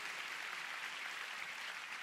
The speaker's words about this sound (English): Come on, let's give the Lord a big hand. Hallelujah. Oh, you want to clap? Let's give God a big clap. Hallelujah.